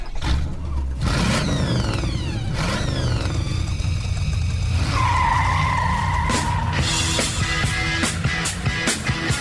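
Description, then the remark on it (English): Race car engines rev and whine loudly, pitch sweeping up through repeated gear shifts, while tires squeal and skid in long sustained screeches, with no talking. “Buckle up and start your engines.”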